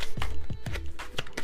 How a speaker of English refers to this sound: So, the cards are now shuffled, so I will go into it.